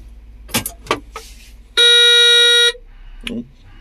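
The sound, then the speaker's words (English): A Caterpillar dump truck's horn blares loud and steady for about a second over a low idling engine rumble as the truck is started up, with a few sharp clunks and rattles just before and a short bump after. “That'll be the cat dump truck getting fired up then.”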